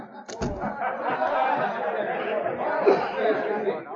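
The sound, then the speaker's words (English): Steady crowd chatter fills a cafe, many overlapping voices blending into an even, lively murmur with a few soft chuckles and a brief clatter near the start. “The girl re-entered the cafe.”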